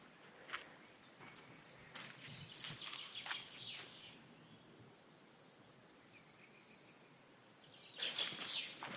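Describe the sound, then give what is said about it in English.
Birds sing and chirp at the edge of woods on a hot, sunny day, with bright trilling phrases and scattered high tweets over a soft outdoor hush, plus a few faint rustles or footsteps. “It's beautiful to have so much bird life around here.”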